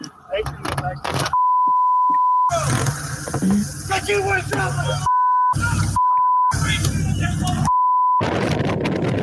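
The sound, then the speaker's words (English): Two men who were pulled over in Nassau County shout outdoors, recorded on a cell phone video from a car driving past, over steady road and car noise, with their yelling repeatedly cut by a loud, steady censor bleep. “I don't know what is in this video, but a viewer sent a cell phone video as they drove past two men who were pulled over in Nassau County, and you can hear them yelling.”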